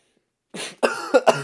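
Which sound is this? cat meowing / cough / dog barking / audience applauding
cough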